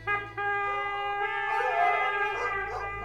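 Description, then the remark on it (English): A pack of hunting hounds bays and howls together in long, sustained, overlapping cries, loud, with more voices joining partway through. “The men sounded their bugles and released the dogs.”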